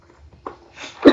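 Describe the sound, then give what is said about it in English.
A single sneeze: a brief catch of breath, a rising hissy inhale, then one sharp, loud, explosive burst at the end. “Bless you.”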